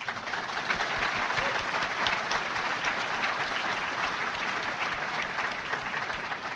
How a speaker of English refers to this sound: So thank you. A round of applause for you, please.